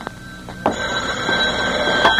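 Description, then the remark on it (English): A telephone rings with a steady, high metallic bell tone that continues throughout, with a few brief clicks and knocks along the way. No one speaks. “Will you take the phone, please?”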